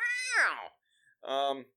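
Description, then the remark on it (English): A voice imitates a cat's meow twice, fairly loud: first a long, sliding, falling yowl, then after a short pause a shorter, steadier mew. “Ooh, I'm a sexy cat. Look at this.”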